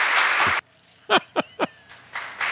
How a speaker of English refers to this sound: I got to give Sticky Pirate a roaring round of applause